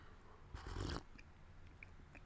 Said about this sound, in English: Matter of fact, let me take a sip of coffee and get my brain going here.